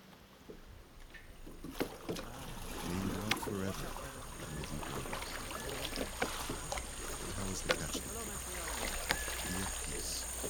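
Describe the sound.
An old woman's small boat being rowed across water: oars dip and splash every second or two over steady lapping and sloshing, with faint voices murmuring in the background.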